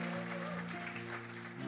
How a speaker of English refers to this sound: We love grandma. Come on, let's give a round of applause one more time to our grandma. We love you.